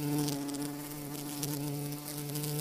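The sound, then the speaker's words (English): Bees buzzing in a steady, continuous drone with a humming tone that holds level throughout, with no voices present. “Bees have a crucial role in ecosystems, agriculture, and food production, but their numbers have been declining for years.”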